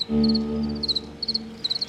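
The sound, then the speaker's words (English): A male cricket's post-mating chirp: four short, high-pitched trilling bursts spaced evenly apart, sounding over a low, steady droning hum that fades out partway through. “Occasionally, the sweet chirp of what I'm pretty sure is the post-mating chirp, which the male makes to keep the female close.”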